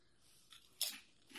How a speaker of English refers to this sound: I think these are very good chips. It's like, a classic Lay's. Good mouthfeel, nice crunch.